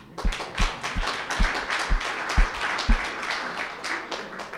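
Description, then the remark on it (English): An audience breaks into dense, steady applause for first-time visitors, with a regular low thumping beat about twice a second underneath for the first few seconds. No one speaks. “Well, this special applause is just for you.”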